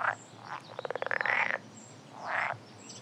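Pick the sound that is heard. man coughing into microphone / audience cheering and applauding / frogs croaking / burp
frogs croaking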